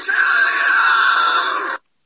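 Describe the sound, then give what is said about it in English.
A person lets out a single shrill, sustained squeal, imitating a dolphin's call. It holds steady and loud for nearly two seconds, then cuts off abruptly into silence. “Seven dolphin makes that sound.”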